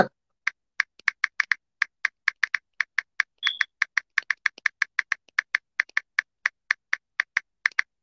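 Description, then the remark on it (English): Steady typing on a computer keyboard as someone checks in online with their team, a rapid string of crisp key clicks in an uneven rhythm, with no talking and one brief higher tone partway through. “Y'all hear me typing?”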